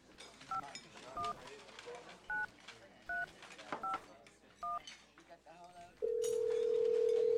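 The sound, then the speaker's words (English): Six dual-pitched telephone keypad beeps, spaced roughly evenly, ring out clearly over a busy background murmur, followed by a loud, steady phone tone that holds to the end. “Hold on, let me see if my phone's working.”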